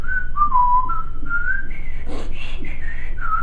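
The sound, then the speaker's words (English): Someone whistles a slow melody, fairly loud, with sustained tones that glide between pitches, a brief breathy break midway, and a low background hum. “you start whistling, you know, Star Spangled Banner”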